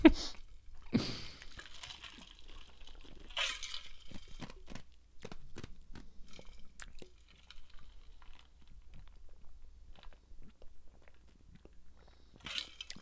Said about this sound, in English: It's really hard to get water out of it because it has little ice cubes, and when I turn it back, like, the ice goes, oh.